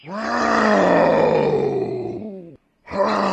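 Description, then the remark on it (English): An angry tigress roars loudly, a long, rough, growling bellow that sinks in pitch, breaks off briefly, then starts again. “The monkey watched the tigress's tantrum from the top of a tree, scrutinizing her eyes.”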